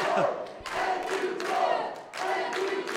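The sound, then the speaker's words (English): A large wrestling crowd chants "thank you, George" in unison for George South at his final match, a loud rhythmic phrase repeated steadily, with shouts and a few claps mixed into the roar. “Oh, they're saying thank you, George. Thank you, George, witnessing George South's final match.”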